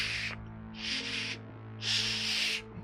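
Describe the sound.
Rustling, like something shuffling over newspapers: three soft, hissy swishes of noise, the last one longest, with a steady low hum running underneath and no talking.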